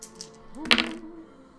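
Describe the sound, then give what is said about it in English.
A quick cluster of hard clicks and clatters as dice tumble across a tabletop during a game, rolling at least 9 with no doubles, lasting under half a second, with a faint low hum sustained beneath. “You got at least 9 on the dice, so that's good, but no doubles.”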